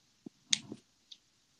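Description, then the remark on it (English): A short scissors-snipping effect: a soft tap, then a crisp metallic snip with a brief rustle, and one faint click trailing after, heard alone without any voices. “Damn, if we got hit by some scissors.”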